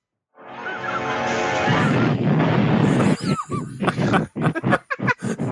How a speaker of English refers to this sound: he chucks the Grim Reaper off the roof, and he explodes when he hits the ground. The explosion was beautiful. It's literally this loud.